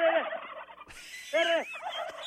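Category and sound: bird, turkeys gobbling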